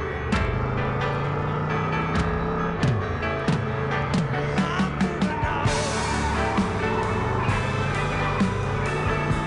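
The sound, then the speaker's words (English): A car drives away, its engine rumbling and humming steadily, with scattered sharp clicks and knocks over it. The noise stays fairly loud throughout, and nobody speaks. “The realistic sounds of a car driving away.”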